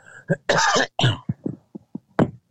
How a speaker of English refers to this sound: I really apologize for the coughing. I'm sorry. It is not COVID.